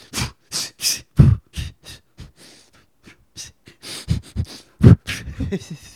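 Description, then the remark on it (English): A person mimics Kristen Stewart's heavy, exaggerated breathing in her film with Robert Pattinson: a string of loud, breathy huffs and gasps in an uneven rhythm, with a brief lull midway before the panting picks up again. “You got K-Stew breathing the entire time.”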